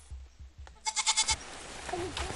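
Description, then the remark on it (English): A goat lets out one short, quavering bleat with a rapid wobble, clear, set against soft outdoor background noise with a few dull thumps just before it. “Local goats are vaccinated against diseases that would otherwise reach wildlife in the forest and possibly threaten the gorillas themselves.”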